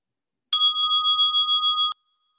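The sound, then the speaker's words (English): A single bell rings clearly for over a second to begin a shared silence, a steady bright tone with a gentle wavering shimmer, then stops abruptly into silence. “As we enter a shared silence with the ring of a bell.”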